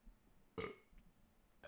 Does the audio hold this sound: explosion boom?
no